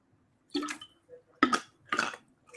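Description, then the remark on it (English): Someone takes several wet gulps of water from a glass, three or four swallowing and sipping sounds spaced about half a second apart, with no talking. “It's always easy to forget when you're out of practice to have your drink of water and the rest of it, speaking of which.”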